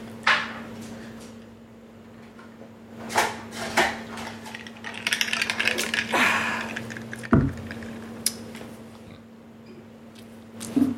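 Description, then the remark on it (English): A drink is poured into a glass, with scattered clinks and taps of glassware and a short burst of liquid noise over a steady low hum; no one speaks. “I'm gonna pour myself another drink.”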